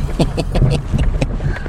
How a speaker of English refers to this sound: Guess what? Guess who's driving in the car again? Us. You're going with me. And guess what? These streets are garbage.